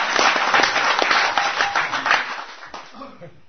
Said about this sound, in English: I mean, give a round of applause to God for appearing as a deity.